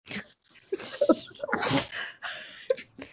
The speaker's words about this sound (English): Three sneezes. I'm so sorry.